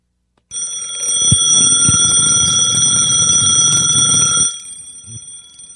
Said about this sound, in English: You say, I remember when she held that silly little alarm clock up there and let the little thing go off and it's not so loud. I should have held the mic up to it. Let's try it again.